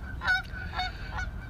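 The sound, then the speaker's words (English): A goose honks three times in quick succession as it flies by, nasal calls about half a second apart, against a low rumbling background. “A goose just flew by.”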